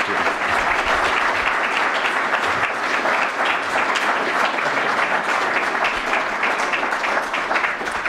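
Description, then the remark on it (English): An audience applauds to thank Admiral Zunkoft after a conversation, a dense wash of many hands clapping at an even, loud level for the full stretch without pause or speech. “So, with your applause, please thank Admiral Z for a great conversation and a great tenure.”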